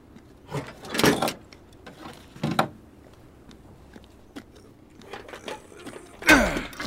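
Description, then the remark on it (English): A heavy shipping door is forced open with loud metallic clanks and grinding scrapes in a few separate bursts, quieter rattling between them, and a final sharp creaking strain near the end. “There's a shipping door over here. Might be able to drive in after all. Does it open? It will.”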